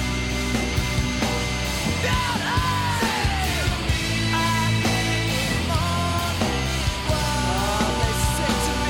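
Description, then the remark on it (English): A loud, dense punk rock track with distorted guitars and driving drums, a raw screamed male vocal yelling over the wall of sound throughout. “Like, I like when he's screaming over it, but then he gets really into it coming up here.”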